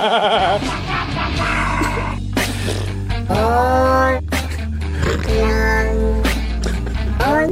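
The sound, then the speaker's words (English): Auto-tuned animal calls, cat meows, dog barks and a rooster crow, pitch-corrected and sung over a steady musical backing, each cry sliding with strong, synthetic-sounding harmonics in a loud, continuous novelty track. “It's like auto-tuned animals.”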